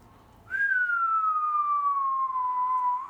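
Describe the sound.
A single sustained human whistle, a you're-in-trouble whistle, slides slowly downward in pitch for nearly three seconds, clear and fairly loud against a quiet background with no talking.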